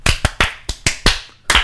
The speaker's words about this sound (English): Oh, my God. Oh, my God, boys, you just slapped each other.